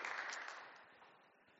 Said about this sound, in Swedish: Jag tycker de ska få en applåd.